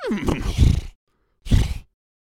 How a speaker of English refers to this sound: I didn't understand. It's just a horse noise. It's not really much insight.